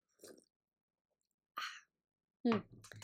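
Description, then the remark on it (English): A couple of soft mouth sounds, then a brief airy slurp of a sip of tea, followed by a voiced sigh-like exhale with a little talking right at the end. “Just gonna take a little sip here.”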